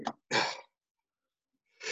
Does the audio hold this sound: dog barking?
no